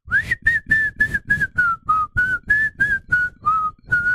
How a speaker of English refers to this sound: Could you hear that? I don't get it. Could you hear it? So you blow air through that hole in a certain way, and it will make you whistle.